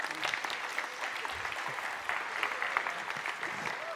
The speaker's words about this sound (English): Can we give all these guys a great round of applause?